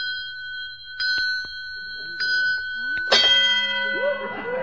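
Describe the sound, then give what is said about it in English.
A small bell on an automatic egg-counting device on a farm rings again and again, once each time an egg is laid: three or four bright dings whose tones linger between strikes, the last one louder and more clangy, with faint voice-like murmurs underneath. “Say, what on earth is that little bell that keeps ringing? Oh, that's an automatic counting device. It rings a bell every time an egg is laid.”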